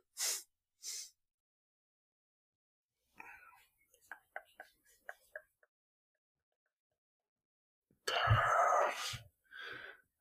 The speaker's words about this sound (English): No, she just knocked something off the table.